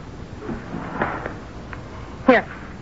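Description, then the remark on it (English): A small locked drawer is opened with a brief scraping clunk near the end, preceded by a few faint clicks and soft handling noises against a quiet background. “It's here, in this little locked drawer.”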